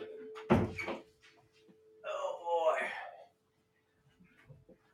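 A door is opened to let a cat in, starting with a sharp thud of the latch and followed by a second or so of rough, swishing movement before it goes quiet.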